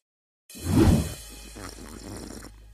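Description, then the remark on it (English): A loud, noisy sip from a drink: a gurgling rush of slurping that eases into a softer, wavering drawn-out slurp lasting a couple of seconds, with no talking. “That was me sipping on some good advice that I just gave to some random anonymous person on Reddit.”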